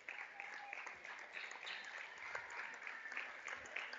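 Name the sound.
round of applause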